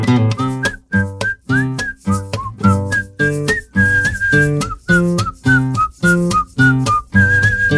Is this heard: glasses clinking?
no